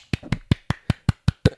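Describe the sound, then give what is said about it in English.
A quick, steady run of about eight sharp claps, evenly spaced, each a crisp smack with nothing else in between. “That was a standing ovation. The clapping of the cheeks.”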